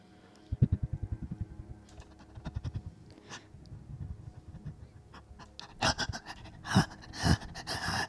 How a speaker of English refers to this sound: Each gasping, belabored breath is spitting a bit more blood up out of his lip, which is dribbling down his cheek, down his chin, onto his shirt.